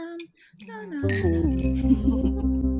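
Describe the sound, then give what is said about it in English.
A single bright clink of glasses in a toast rings out, a sharp high chime right after a voice, followed by a steady low hum of voices and sound. “Cheers. Cheers.”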